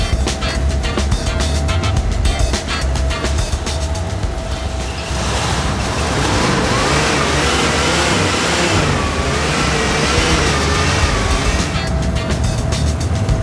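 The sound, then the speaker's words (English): A car engine runs loud, its steady rumble climbing into revving with rising, wavering pitch through the middle before settling back to a rough idle. No one speaks. “Good engine. Runs perfect, didn't I tell you?”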